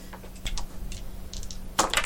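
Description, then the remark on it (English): Dice clatter and bounce out of a dice tray in a quick series of sharp clicks, ending in a louder, denser rattle as they tumble onto a hard surface. “God, those dice don't want to stay in the tray at all.”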